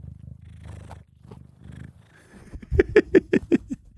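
A male cat purrs right at a microphone covered in catnip, a low rumbling that swells and fades with each breath, then builds into a louder, rhythmic series of raspier pulses near the end.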